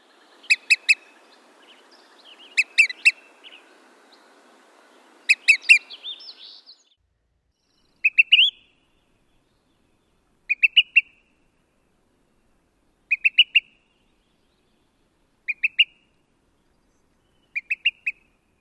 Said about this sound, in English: the most frequently heard call of the olive-sided flycatcher is 2 to 4 sharp pips.